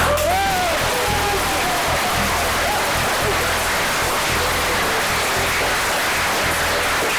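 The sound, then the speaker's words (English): A large live crowd at a Times Plus event in Brighton applauds loudly and steadily, a dense wash of clapping with some cheering and whistles rising through it, continuing for several seconds without speech. “Good Lord, that applause was so loud it was almost sarcastic.”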